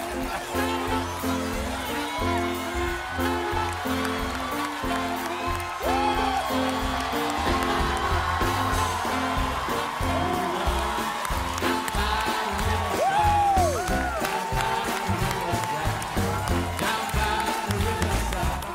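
A loud, dense crowd roars and cheers continuously as a congressman crowd surfs into it at Stephen Colbert's invitation, with scattered whoops and shouts rising above the steady, enveloping din.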